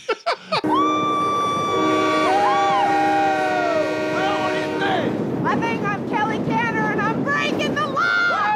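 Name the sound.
train passing on rails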